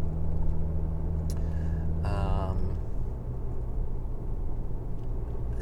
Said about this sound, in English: Okay, so I should stop here now because I'm driving in the big city of Chilliwack traffic now.